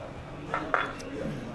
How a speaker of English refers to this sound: Let's cheers to that. Cheers to them.